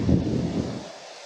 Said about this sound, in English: Those winds, they keep yelling. They are screaming in my ear now.